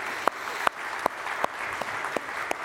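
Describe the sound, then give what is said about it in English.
A church audience applauds the morning youth program in a steady, dense wash of clapping, with sharper louder claps landing in an even rhythm roughly every third of a second. No one speaks. “But before I do that, how about have another round of applause for our youth program this morning?”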